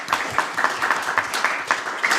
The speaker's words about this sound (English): So I'd just like you to have a wee round of applause for all those that help in any way to keep our gardens looking so nice. And they do it unseen and unasked. It's really great. So a wee round of applause for them.